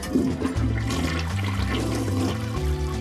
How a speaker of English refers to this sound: To my mind, it's like the whoosh of the toilet as you flush almost serves as a mind eraser.